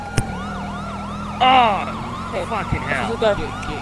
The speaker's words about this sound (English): Put my siren on, bro.